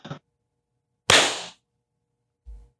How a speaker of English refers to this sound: Did we all clap? Yeah. Yes, we did.